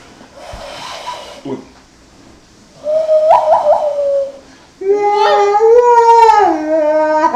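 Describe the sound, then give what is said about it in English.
A voice imitates the wailing, howl-like theme of the western film The Good, the Bad and the Ugly in two sustained phrases, the pitch sliding up and down, loud and alone after a brief stretch of soft murmuring. “You can also do the good, the bad, and the ugly.”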